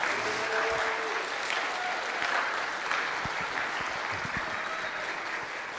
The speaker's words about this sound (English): And so please give these seniors a round of applause, please.